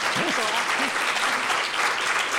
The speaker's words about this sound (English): All right, before we dig in, I'm curious who's seen the movie. Applaud if you have.